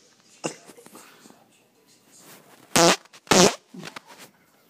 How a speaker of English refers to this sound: Let me play you the second fart really quick so you can listen to it. Okay. Here you go.